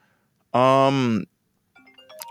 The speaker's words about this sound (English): Oh, wait. It's a phone call.